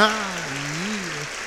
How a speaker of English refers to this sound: Is that a dog clapping? How was that even possible?